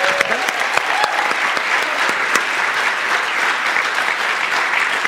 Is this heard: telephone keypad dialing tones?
no